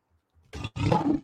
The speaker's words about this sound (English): Got to get that man a Lions roar, man.